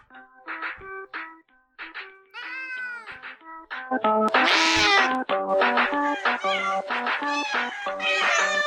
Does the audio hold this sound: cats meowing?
yes